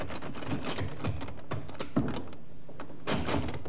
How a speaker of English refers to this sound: The inspector and the sergeant walked for short distance from the inn to Colonel Reed's place of business, almost directly opposite Davis's office. The sergeant tried the door.